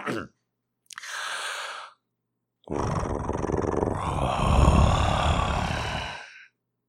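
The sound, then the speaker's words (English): A person makes a low, rumbling vocal growl, preceded by a short breathy exhale, with the second sustained growl deepening and swelling before cutting off. “So hopefully that's like a growl that like affects your body.”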